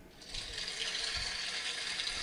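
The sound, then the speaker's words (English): A canned applause effect from a sound pad plays as a steady, dense hiss that sounds more like rushing water or a flushing urinal than clapping. It holds an even loudness for about two seconds with no voices. “What you just that was an applause. Oh, it sounded like a rushing urinal, like after it flushes.”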